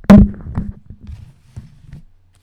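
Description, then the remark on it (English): A Shrine of the Black Medusa card deck being shuffled: a sharp initial snap followed by a fading flurry of quick, papery clicks that trails off after about two seconds, with no one speaking. “Shuffling the Shrine of the Black Medusa deck.”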